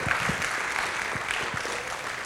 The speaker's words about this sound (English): Come on. I believe this is a good time to give him a good round of applause.